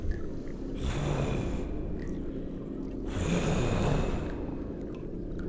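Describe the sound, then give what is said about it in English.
Two long, heavy snorting breaths rasp out one after another over a low rumbling bed, loud, like a huge beast exhaling, from a gigantic monster in a cave. No one speaks. “Now that you mention it, I also hear a heavy breathing.”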